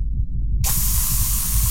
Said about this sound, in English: Almost immediately, Raya recognized the sound of the hiss as, down below, frost built up on the metal leg of the tower.